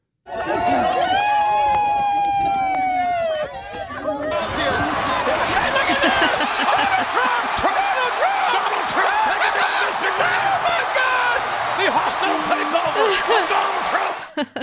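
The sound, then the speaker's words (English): An excited crowd in a video clip roars with overlapping shouts and voices, punctuated by sharp claps or thumps, loud and sustained throughout; the first few seconds carry rising and falling whistle-like tones before the din fills in. “The crowd sounded a little more fired up in that one, though.”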